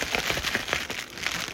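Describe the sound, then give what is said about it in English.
Bubble wrap from the packaging of a newly unboxed microphone being squeezed and crinkled, giving a steady run of small crackles and a few sharper snaps, with no voices. “Oh, yeah, it'll pop. Pop.”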